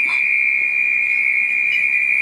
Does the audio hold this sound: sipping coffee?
no